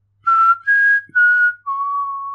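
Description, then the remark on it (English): A person whistles the simple four-note Mockingjay tune, each clear tone held briefly with short gaps, the last note drawn out longest. The whistled melody imitates a bird's call. “This is where we learn the whistle.”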